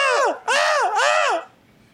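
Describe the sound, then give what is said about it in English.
A person imitates potatoes screaming as they are salted into McDonald's french fries, with three loud, wavering cries of "ah," one after another. The cries are high-pitched and strained, and each swoops up and then falls away. “When they do it, if it's quiet, you can hear the potatoes screaming. They're like, ah! Ah!”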